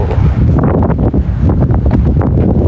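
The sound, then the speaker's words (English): Loud wind buffeting a microphone outdoors, a continuous low rumble with gusty fluctuations throughout and no voices. “It is windy at the Licbo.”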